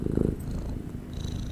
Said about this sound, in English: Hold on, my cat is purring. Can you hear him? You know what I'll do? I'll bring him closer to the mic.